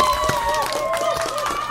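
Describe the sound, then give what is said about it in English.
Several people clap in an uneven, loose rhythm, sharp slaps landing every fraction of a second over a steady humming tone and some lively crowd noise. “White people claps in the building.”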